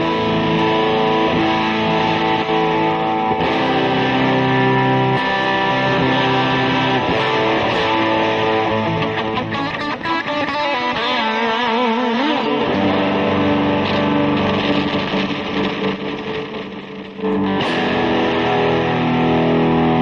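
Heavily distorted electric guitar played through a Behringer HM300 Heavy Metal Distortion Pedal in a live demo, sustained, crunchy chords and riffs, loud and thick with buzzing harmonics, with a brief pick scrape or noise burst near the end and no talking.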